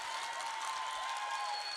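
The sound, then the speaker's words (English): An audience at the Verselandia 2020 poetry slam applauds a poet after the judges' scores, in a steady, dense wash of clapping that holds at an even level for the whole two seconds, with no voices on top. “Give up that applause and keep that applause going for the last poet in the last round of Verselandia 2020.”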